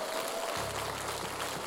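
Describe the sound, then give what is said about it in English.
An audience at a church service claps together as a clap offering to the Lord God, a dense, steady wash of applause that holds at an even level throughout, with a low hum coming in partway through. “Come on, give the Lord God a clap offering.”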